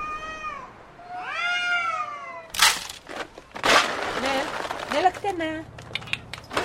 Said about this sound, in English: But unlike the people, a lot of the cats look mangy or sick. And the noises they make in the middle of the night. Ooh, it's like a war zone out there.